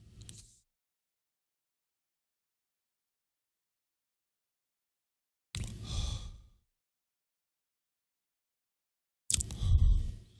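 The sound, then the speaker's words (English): A long, deep breath is drawn in as someone takes one big drag of Delta 8 from the vendor Buy Delta 8, followed after a pause by a breathy, rushing exhale. The breaths stand alone amid silence, with no talking. “And I'm going to put them in the description, but let's just have one big drag before we end the episode.”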